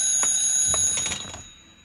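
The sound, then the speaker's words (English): A telephone at Lorca's Pastelería, a pastry shop, rings with a bright, shrill electronic trill, rapid pulses repeating for over a second before the ringing fades out. No voices. “I may speak to the phone.”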